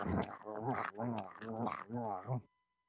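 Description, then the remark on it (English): A person imitates dogs growling and chewing as they attack: four rough, throaty voiced bursts in quick succession, fairly loud, ending abruptly in silence. “Yeah, they make awful chewing noises.”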